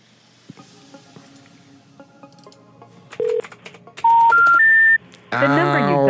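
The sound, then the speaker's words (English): Telephone keypad dialing tones as a customer service phone number is dialed: a short beep, then a loud run of three steady tones stepping upward in pitch, over faint crackling hiss. A voice begins speaking right after. “Does your phone number even exist?”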